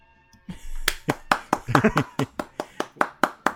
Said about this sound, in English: That was just the end of my thing. And that was me clapping.